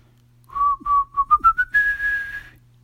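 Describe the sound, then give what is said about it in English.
A flute plays a slow, simple tune: a few short notes stepping gradually upward in pitch, ending on one long sustained high note, with a faint low hum underneath. “Naya and Paul stood there, frozen, while Lulu calmly pulled out her flute and slowly began to play her tune.”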